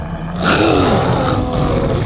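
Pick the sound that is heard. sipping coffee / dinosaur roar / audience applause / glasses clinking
dinosaur roar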